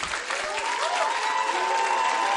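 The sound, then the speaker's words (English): An audience claps together at the close of a service in a dense, steady wash of applause that holds at an even, fairly loud level throughout, with a thin sustained tone wavering faintly above the clapping. “There's no peace in your clapping.”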